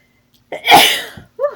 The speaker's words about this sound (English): Got the sneezes.